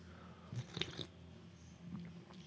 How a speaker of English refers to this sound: You like that slurp? You like that coffee slurp?